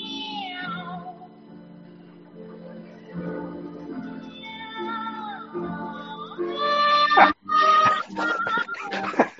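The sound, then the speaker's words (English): Several cats meow in overlapping, drawn-out, mournful cries, rising and falling like a sad chorus, growing louder and more insistent toward the end with a brief gap near the close. “It's the cat choir.”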